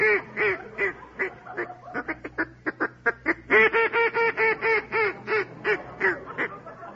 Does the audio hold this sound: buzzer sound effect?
no